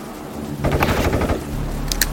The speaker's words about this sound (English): It appears that gunshots have just been fired from inside Mr. Washington's home.